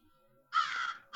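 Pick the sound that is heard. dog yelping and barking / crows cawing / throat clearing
crows cawing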